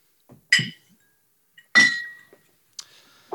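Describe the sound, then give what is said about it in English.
Glass bottles clink together in a toast, a few sharp bright chinks spaced out, one ringing briefly with a sustained tone, fairly loud with silence between. “boys, virtual cheers.”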